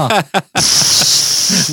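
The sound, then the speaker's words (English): A short burst of voice gives way to a steady, loud, high-pitched hissing spray, like a fire extinguisher discharging, holding unbroken for over a second; a spray effect in the Rome burning scene at Spaceship Earth. “Spray for breeze or something. Fire extinguisher.”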